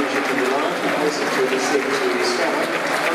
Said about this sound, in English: Good round of applause for Jerry Scalak. I think he's done well today. Put a lot of effort in. And the applause to match.